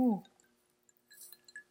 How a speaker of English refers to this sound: Let's take a sip. Oh, I get so heated with these cocktails and coaching.